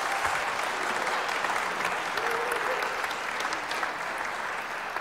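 Sustained applause from a sizable audience, dense clapping filling the full five seconds at a steady, even loudness with no voices standing out.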